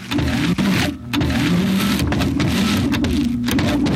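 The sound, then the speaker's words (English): A paper shredder in an office grinds away in a loud, steady mechanical roar with a churning low rumble while a man's tie is caught in it, briefly dipping twice before droning on without any voices. “My tie is caught in the machine!”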